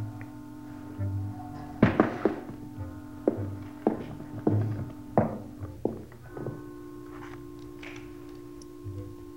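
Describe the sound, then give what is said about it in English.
A ventilator cover on a wall being shifted as someone comes out through it: a run of about eight dull metallic clunks and knocks at an uneven pace, loud against a steady low mechanical hum that continues after they stop. “Somebody's moving something. Yeah, sounds like a ventilator, doesn't it?”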